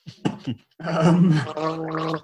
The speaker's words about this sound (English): What I'm enjoying about it at the moment is when I watch these games is, let me just clear my throat here. We love a bit of dead air and the sound of me going.